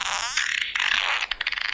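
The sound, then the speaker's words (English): Someone blows a raspberry, making a buzzy, hissy fart imitation with the mouth. A long sputter gives way to a string of quick, choppy bursts, fairly loud, with no talking. “I'm gonna give you some farts.”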